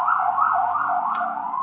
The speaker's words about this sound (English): So we hear sirens right now.